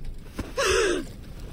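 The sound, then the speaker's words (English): A woman on a boat gives a single sharp, voiced gasp around 4 o'clock, fairly loud, its pitch rising then dipping over about half a second before trailing off into quiet. “Around 4 o'clock, … gave a gasp.”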